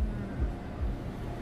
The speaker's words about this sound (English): Okay, well, I don't know why this car wash is giving me the wash still.